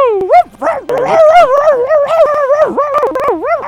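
Dogs barking and yelping nonstop, their loud, high-pitched cries sliding up and down into drawn-out howls and whines, with sharp short yips cutting through; no one speaks.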